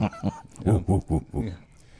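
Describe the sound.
A man's voice imitates a dog barking, giving a rapid series of about six or seven loud woofs in an uneven rhythm before trailing off.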